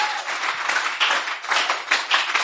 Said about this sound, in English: Let's clap for God. Applaudissons pour Dieu.